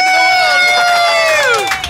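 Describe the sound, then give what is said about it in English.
A large crowd in Australia yells the chant "Chicken Fest" in unison, a loud, sustained mass of voices holding a steady pitch before sliding downward at the end. “As you heard there, we ended up with the whole of Australia yelling Chicken Fest.”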